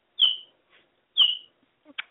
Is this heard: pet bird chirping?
yes